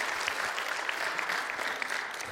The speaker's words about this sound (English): Come on, if one person claps and one person amens, we may as well all do it.